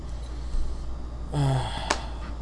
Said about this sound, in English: Well, I'm in between when I'm yawning, apparently, even though I woke up at 2:30 in the afternoon